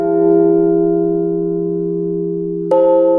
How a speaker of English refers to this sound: The bell continues to call the peoples to be together. They was in the top of the bell's tower to call everybody, and now they're inside the church and they continues to call. They always call.